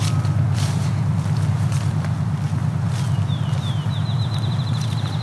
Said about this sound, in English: That accelerating call you're hearing is a field sparrow, right now in the tall grass prairie. And we got a sparrow ticking at us, probably a field sparrow.